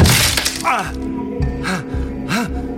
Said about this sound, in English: As he hit the floor, phone slipping out of his bloody fingers, he heard a crack and felt a shower of wood splinters.